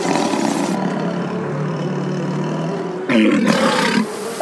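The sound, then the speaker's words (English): The Godzillipede, a giant monster creature in a knee-deep swamp, roars: a long rumbling growl that swells into a louder, harsher bellowing cry near the end. It is loud, with no talking. “That's definitely Godzillipede.”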